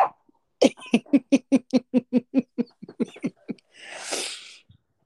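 dog barking indoors

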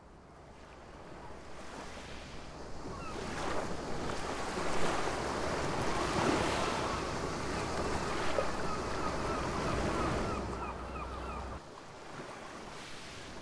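sea waves and surf

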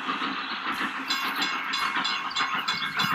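train noise

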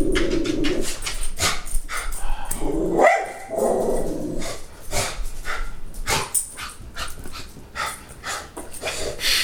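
dog barking at passerby

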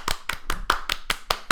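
applause

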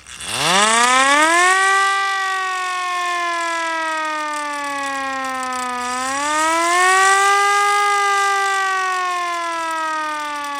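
police siren sound effect

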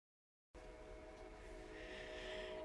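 train passing

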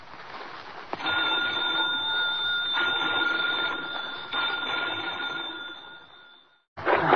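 bell rung three times

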